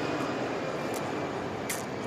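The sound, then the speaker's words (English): A steady, broad roar of a jet plane passing overhead, holding an even loudness throughout with no voices, just a continuous airy rumble filling the background. “Jet plane. You know, right there. And the jet plane came over right before the phone thing went nuts.”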